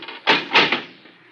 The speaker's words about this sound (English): This thing gets heavier every week. Door's not that heavy